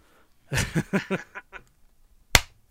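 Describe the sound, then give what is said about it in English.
A brief burst of chuckling gives way to a pause, then one sharp, loud hand clap rings out on its own near the end. “We haven't even done the clap yet, which means it's going to be hard for you to...”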